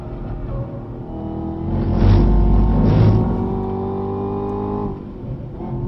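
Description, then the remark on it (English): A Camaro ZL1 race car engine revs loudly and steadily on track at the Hockenheim Ring, its droning pitch holding high with two brief surges of rushing noise in the middle, then easing slightly toward the end. “That's in the Camaro. They're at the Hockenheim Ring in Kurzenbindel.”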